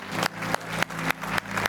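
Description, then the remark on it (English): A church audience in Montgomeryville clapping together during a service, a dense wash of hands with steady rhythmic accents roughly every quarter second, over a low sustained musical drone, with no one speaking. “Come on, let's keep clapping, church.”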